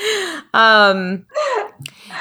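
Heavy, exaggerated breathing right up against the microphone: three or four loud, voiced gasps and pants in quick succession, a person theatrically imitating heavy breathing with no words spoken.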